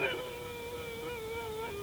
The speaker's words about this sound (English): It sounds like howling, doesn't it? Like a dog, or a wolf, or a dingo.